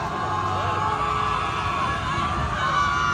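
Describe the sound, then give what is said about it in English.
A small crowd of about 30 fans, greeting a playoff team getting off the plane from Miami back in Buffalo on a windy day, cheers and shouts in a steady, continuous roar of mixed voices, with occasional whoops rising above the dense, unbroken wash of noise. “Well, it's probably just like 30 people right there.”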